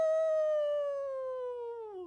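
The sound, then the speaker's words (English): A person imitates a wolf howl: one long, steady, clear tone that holds for about two seconds and then slides downward at the end, loud. “Oh, why is that wolf related?”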